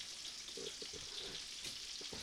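Sweet Italian and cheddar brats and green chili bacon sizzle in a hot pan, a steady crackling hiss that fills the whole moment, with a few faint low knocks from the cookware underneath.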